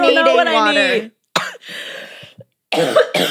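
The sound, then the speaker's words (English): Raspy throat clearing from a tickly throat comes in several rough bursts, separated by brief silences, with a strained vocal groan at the start. “Sure, we can give you a minute if you need to like cough it out.”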